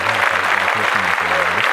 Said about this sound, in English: I mean, happy Black History Month. Let's clap that up. Yeah, let's clap that up.